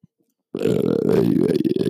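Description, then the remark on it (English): A long, loud burp erupts after a brief silence, rumbling low and steady for about a second and a half with a rough, croaky texture. “No, guys, if you guys play that burp in reverse, I actually say a bunch of spoilers about next season.”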